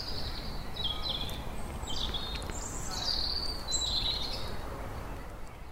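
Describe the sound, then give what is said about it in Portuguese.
Several birds chirp and trill in repeated short phrases over a steady outdoor background hum, moderately loud, with no one speaking, in London at about 9:15 in the evening while it is still light, on a pleasant day with people out in the street. “Ainda está claro, um dia muito agradável e tem gente na rua, até os passarinhos ainda estão de plantão.”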